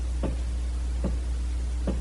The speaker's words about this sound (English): But as I looked, there came a tap at the door.